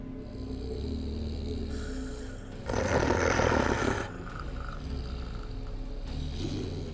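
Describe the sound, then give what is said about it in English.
A voice imitates an angry growl as a player's in-character reaction before rolling for initiative in a game: a low, rasping, sustained rumble that rises into a harsher, louder snarl midway, then settles back into a steady guttural growl. “I can't even say anything, I'm so angry. I just growl and roll for initiative.”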